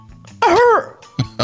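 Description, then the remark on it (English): A voice imitates a deep, wet cough that sounds like a seal barking: one long, loud, throaty hack followed by two short, sharp coughs, with no talking. “It was one of those deep, wet coughs that sounds like a seal barking.”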